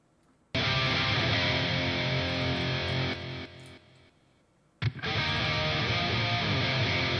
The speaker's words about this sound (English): Here's the crunch guitar.